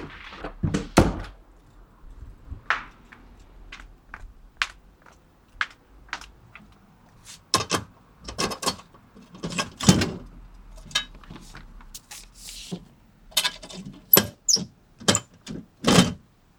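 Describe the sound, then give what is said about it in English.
A letter with a hand-drawn flower is pushed into a mailbox: an irregular run of hollow thunks, sharp clicks and metallic clacks, some louder than others, with faint rustling between them and no talking. “Now putting in this in the mailbox.”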